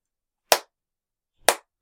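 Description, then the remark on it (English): Two sharp, heavy foot stomps on the ground, about a second apart, each a loud thud with a quick decay and silence in between, done as part of the wrestling move Sweet Chin Music. “And essentially what it is you stomp your foot on the ground repeatedly.”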